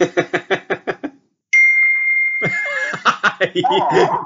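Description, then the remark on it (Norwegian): A single bright electronic notification ding from a computer rings out clearly and lingers for about a second after a brief pause, framed by bursts of rhythmic laughter before it and laughter with talk after. “Må skru av lyden. Ja, men jeg har skrudd av på telefonen, men jeg kommer inn på PC nå.”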